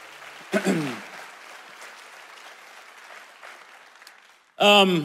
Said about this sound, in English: One more time. Can we just give Jesus a hand clap this morning?